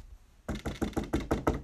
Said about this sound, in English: Then I came to one door that said the Reading Oak Library. It was a tree-shaped library. I knocked on the door.